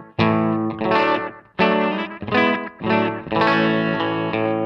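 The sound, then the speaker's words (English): An electric guitar played through a Carbon Copy analog delay pedal plays a few loud, sustained, overdriven chords, each ringing out with a washy effected tail that blurs into the next. No voices, just the guitar alone. “I kind of have the carbon copy on for most of the show to kind of, like you were saying with John, give it more of like a tight, like reverb sound.”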